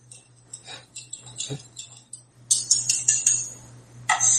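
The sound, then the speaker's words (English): A cocktail made with lemon juice and pepper being stirred to mix and chill it, with quick, rhythmic high-pitched clinks against glass. The clinking starts softly and grows louder and busier partway through, over a steady low hum. “Now give it a stir. A little mix up, chill down.”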